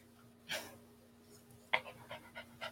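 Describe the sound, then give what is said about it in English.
A female dog pants in quick, breathy bursts, with a soft rhythmic rasp repeating several times over a low steady hum, and no one talking. “I hear more of her breathing than I hear you talking.”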